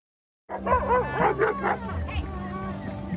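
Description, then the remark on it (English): A person barks like a dog in a quick series of loud, yelping woofs at a street protest rally, with a noisy crowd murmuring and talking in the background. “When you take your gag off and stop being a dog.”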